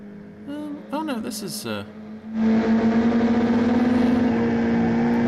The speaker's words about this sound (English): Now we have a car chase. Unfortunately, much of it is a back projection car chase.